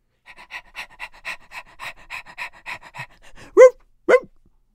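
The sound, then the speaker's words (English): A voice imitates a dog panting, with quick, rhythmic breathy huffs, then finishes with two short whining yelps, fairly loud. “Dude, imagine acting like a dog, going back to your parents' house and just acting like a dog, and they're trying to talk to you, and all you're doing is barking back at them.”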